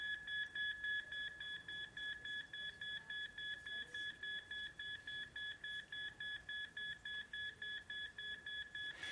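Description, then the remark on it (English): A hospital monitor, with wires strapped to a patient's chest, gives off a long run of high, electronic beeps in quick, regular succession that keep getting faster as the number on its screen rises, with no voices and only faint background hiss. “And as I hear these beeps continue to get faster, and I watch the number on the screen continue to rise”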